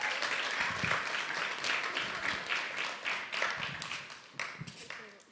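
A small crowd applauds steadily, a dense patter of many hands clapping at close range for several seconds, with a few louder individual claps standing out.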